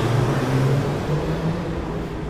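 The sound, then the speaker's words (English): Loud, steady roar of traffic with a low engine drone, as fast cars speed past, easing off slightly toward the end. No one speaks. “Again, more police officers and more fast cars speeding by.”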